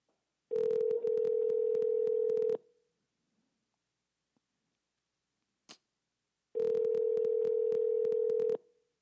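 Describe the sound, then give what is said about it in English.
A phone call being placed: the line rings out twice with long, steady ringback tones about four seconds apart, separated by near silence and a single faint click. No one speaks. “Watch this fool answer the phone.”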